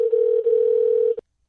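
A steady, loud telephone tone as a phone call is placed, humming continuously for about a second, with a brief dip partway through, then cutting off abruptly with a click.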